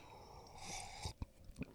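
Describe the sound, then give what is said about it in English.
An airy slurp of piping hot, fresh roasted Christmas winter blend coffee being sipped, followed by a few soft, wet swallowing clicks and gulps, quiet and intimate with no talking. “Got my first glass of Christmas winter blend, fresh roasted coffee that I'm sipping on right now.”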